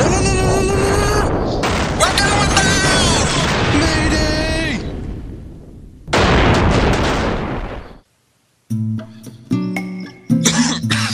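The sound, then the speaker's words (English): Loud, crackling bursts of a magical explosion from an elemental steel burst spell, with shimmering, rising tones swirling through a long blast, then a short silence followed by sharp, chiming electronic pops. “Okay, so maybe elemental steel burst to you was a bit too much.”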